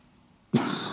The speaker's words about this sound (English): Excuse me, that's not a new cough. It's been with me for 5 months. Relax. And it's not dry either.